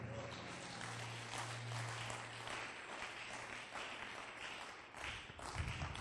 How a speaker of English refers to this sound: Clap your hands and say a big amen.